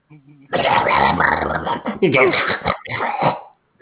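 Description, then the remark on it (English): A dog growls loudly, a rough, gravelly snarl lasting about three seconds with a couple of brief breaks before it trails off. “You hear the dog?”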